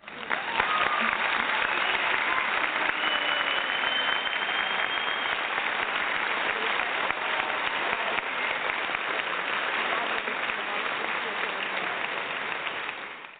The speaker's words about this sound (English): And you know what? We're going to give you guys some applause claps, so hold on a minute.